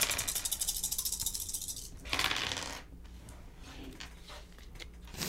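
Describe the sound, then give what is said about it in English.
Dice rattle rapidly in a cup or hand for a couple of seconds, then spill out with a clattering burst, followed by scattered light clicks as they settle. Fairly loud, no voices. “We got to roll these die. All right, rolling your dice.”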